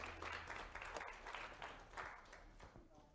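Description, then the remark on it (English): A church audience claps together to welcome guests and online viewers, a dense, steady patter of many hands lasting a few seconds, with faint murmuring voices mixed in beneath the applause. “Guys, can we give a hand clap and welcome our family as well as those who watch online?”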